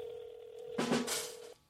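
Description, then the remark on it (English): A steady telephone tone hums throughout as a phone call is placed, briefly overlapped near the middle by a louder, crackly burst of dialing sounds before the tone cuts off. No one speaks. “The phone is ringing. We're calling Jake.”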